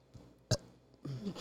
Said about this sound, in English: And eating grapes. And eating grapes and burping into the microphone.